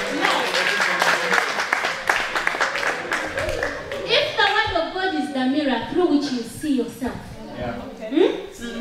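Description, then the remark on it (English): A crowd applauds people who have done well, with dense, steady clapping for about four seconds. Then the clapping thins out as voices rise and talking and cheering take over. “Clap for them, they have done well.”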